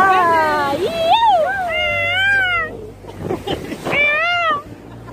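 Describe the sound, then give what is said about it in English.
A person's voice imitates a Brooklyn pigeon call with a few loud, warbling cries that swoop up and down in pitch, separated by short breathy pauses. “Oh, she had me bird calling.”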